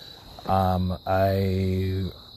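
Crickets chirp outdoors in the Hamptons in a steady, high-pitched trill that runs continuously in the background, while a voice makes a drawn-out vocal sound over it.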